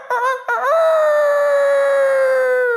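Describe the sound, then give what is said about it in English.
A rooster crows loudly: two short clipped notes, then a long, strained, sustained call that holds steady until the end, with no talking. “And immediately the rooster crowed the second time.”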